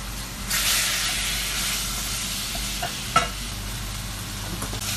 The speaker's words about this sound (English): I'm just going to add the pigeon to the butter now. It's a very dark meat. It looks like liver.